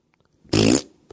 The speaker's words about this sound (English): Why do you have to end with the fart sound, dude? Farts are funny, dude. You don't like the fart?